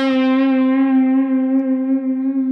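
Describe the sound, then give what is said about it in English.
A single sustained electric guitar note in an A minor pentatonic scale rings out clearly on its own, slightly overdriven and rich in overtones, with a gentle wavering finger vibrato held for a couple of seconds. “Okay, instead of just playing that note and having it be what I call static, just non-moving, what I want to do is I want to add a little bit of a wave to this.”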